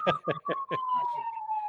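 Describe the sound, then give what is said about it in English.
An emergency siren passes by, a steady wailing tone that slowly drops in pitch as it goes, with a few brief voice sounds over the start. “And of course, there's an emergency happening that a siren would be driving by right now.”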